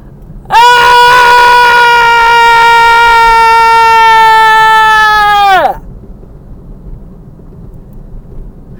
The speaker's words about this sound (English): So on a count of three, let's give our pain a scream. Let's give our pain a yell. One, two, three.